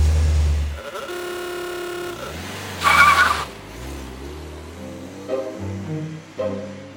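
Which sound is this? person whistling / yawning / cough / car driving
car driving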